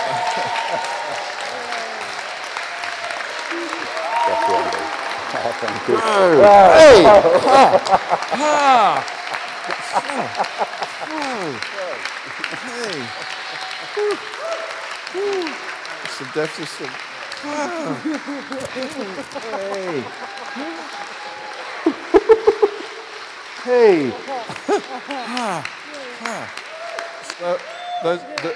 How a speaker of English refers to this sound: I think you could clap now if you want to.